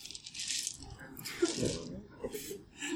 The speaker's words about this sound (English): My dice rolled above the 12. Rolled the same thing as before.